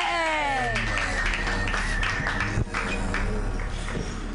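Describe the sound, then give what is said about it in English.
An audience at a comedy show claps steadily for a few seconds as a comedian is introduced, a dense, continuous patter of applause mixed with some higher sustained tones and a brief sharp bump midway. “Just clap, you guys.”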